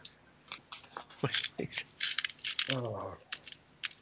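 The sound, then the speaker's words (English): Small hard dice click and rattle against each other in a big box of dice as one is picked out, with a brief murmured voice partway through. “Have you got your big box of dice? I have. I chose one out. I picked one out.”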